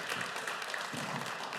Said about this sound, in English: thank you boys for grabbing it. One more round of applause for these two handsome men.